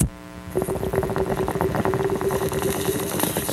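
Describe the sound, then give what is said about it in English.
Dense, rapid gurgling and bubbling starts after a brief pause and runs continuously, with a steady low hum under a busy rattle of bursting bubbles, like water being drawn through a bong. “Can you give me a little bong rip right now”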